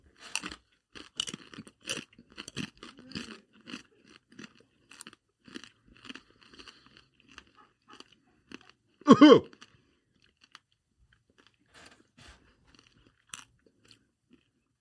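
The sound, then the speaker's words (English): Loud, crunchy chewing close to the microphone, with rapid irregular bites and crackles for about ten seconds, one heavier crunch partway through, then quieter sporadic chewing sounds trailing off. “don't do your chewing near the cat during near the microphone again”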